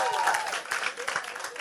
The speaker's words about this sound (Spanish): Ok, ¿quiénes votan por este con un aplauso? ¿Quiénes votan por este? Ok.